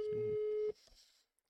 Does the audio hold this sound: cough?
no